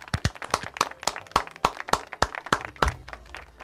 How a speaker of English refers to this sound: Why don't we clap? Why don't we? Yeah.